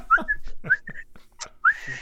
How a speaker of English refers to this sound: Yeah. I'm like whistling like, you know, like she's a dog. Like, hey. And I finally somehow something gets her attention.